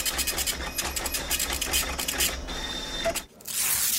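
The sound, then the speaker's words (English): A supercomputer's printer prints a report with a steady mechanical whir and rapid rhythmic clicking as paper feeds through, then briefly pauses before a final rushing sweep of the print head. “Source, science.org, printing report.”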